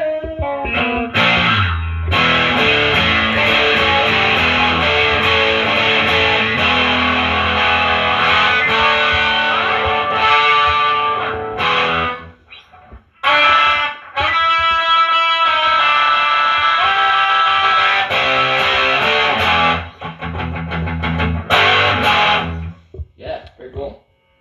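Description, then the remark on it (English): Heavily distorted electric guitar through a pedal set to vintage mode with the distortion turned all the way up, loud and saturated, playing sustained chords and riffs with a couple of brief pauses before crunching back in. “Vintage mode, nothing but distortion.”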